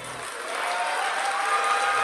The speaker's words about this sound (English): Split the room in half and shit. Clap your hands if you think I'm going to hell.